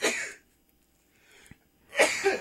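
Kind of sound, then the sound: human body sound, sneeze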